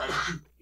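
A single loud sneeze bursts out and cuts off quickly, followed by a brief moment of quiet and a faint murmur.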